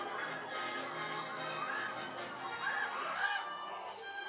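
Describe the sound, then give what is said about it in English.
A bird in a video game squawks loudly in harsh, honking cries like a goose, three or four calls in quick succession over a dense, constant backdrop of noise. No one speaks. “Things would have been much easier if you killed that bird.”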